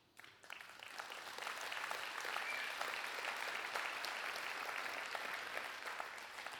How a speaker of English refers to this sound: I don't know if you're clapping for what I said or because Jesus talked about golf.